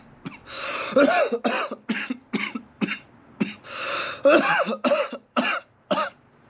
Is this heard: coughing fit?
yes